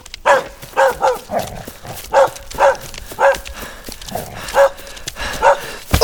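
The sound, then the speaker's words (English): A dog barks repeatedly in a steady, insistent series of about a dozen sharp barks, with short pauses between them and no talking. “Damn dog, go away.”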